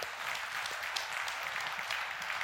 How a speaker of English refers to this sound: Now, let me stop you for a minute. Why are you clapping? You know why you're clapping? That's not easy.